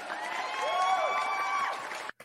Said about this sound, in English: And DeSean Jackson, he is retiring. So I just wanted to give a quick little applause for DeSean Jackson.